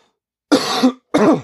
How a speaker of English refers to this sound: So anyways, cough, cough, hack, hack, live my life.